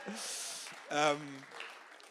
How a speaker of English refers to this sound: Can I have a round of applause?